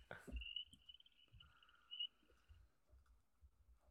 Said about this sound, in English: Woo! That was crickets.